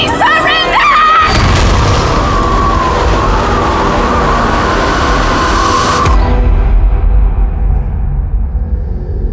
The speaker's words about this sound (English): They're firing at us. Actually, they're firing at the station, but I'm sure they'll get round to us soon enough.